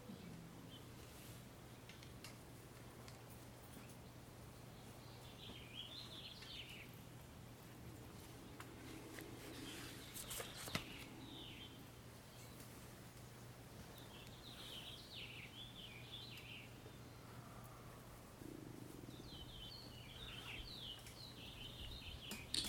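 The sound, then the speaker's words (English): Outdoors, a finch sings several short, bright phrases at intervals while lower turkey calls rise now and then, all over a steady low hum and faint background hiss. “Finch sings, and the turkeys bellow.”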